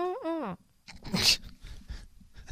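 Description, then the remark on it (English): A person imitates their female dog's whine: a brief, high, wavering nasal whimper that rises and dips, followed by a few breathy, noisy bursts and scuffling sounds. “Well, she whined, and then I did the impression.”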